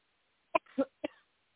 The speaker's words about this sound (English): Come on out. You got to cough it out. Deep breath and cough from your gut, not your throat. From your gut, not your throat.